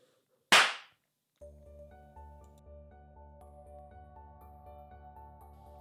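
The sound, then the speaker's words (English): A single sharp, loud slap to the face rings out alone, a crisp smack with a short decay, followed by a brief pause before steady rhythmic music begins. “next time, Parliament, beware a slap to the face”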